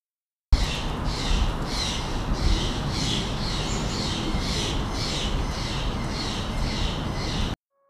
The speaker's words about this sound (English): Bird calls were recorded in the wild by me.